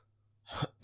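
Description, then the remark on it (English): A sharp inhale rises out of near silence, then a sudden loud cough bursts right into the microphone, harsh and distorted at the very end. “Or cough into one.”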